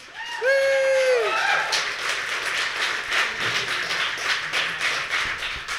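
A live show audience bursts into steady, dense applause that begins with a loud rising whoop and carries on for several seconds, with occasional low thumps like stomping mixed into the clapping.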